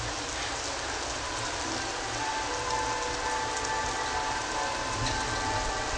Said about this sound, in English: The piano is stopped, so the clouds are parting. Yet it's still raining.